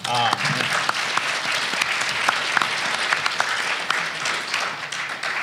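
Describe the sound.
People at a panel discussion applaud steadily, a dense wash of many hands clapping at a fairly loud, even level with sharper individual claps popping out, and a brief voice at the very start.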